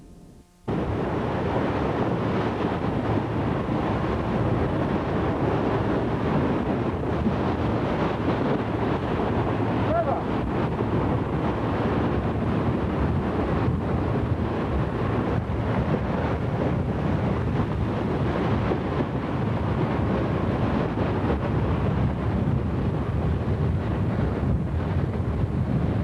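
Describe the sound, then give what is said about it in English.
Steady, loud wind buffets the microphone aboard a boat on open water inside a vast rain mass, with a continuous rushing wash of waves and spray that never lets up. “The front of that rain mass is now more than 200 kilometers across, and from the boat we'll give you a look at what 30,000 square kilometers of rain looks like close up.”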